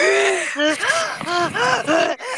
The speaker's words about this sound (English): Someone's breathing like really heavily. Who is breathing really heavily? It might be me. No, it's not me. I have AirPods in.